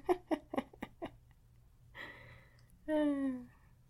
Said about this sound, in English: That would be a snore from my dog, by the way.